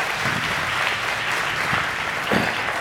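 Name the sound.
applause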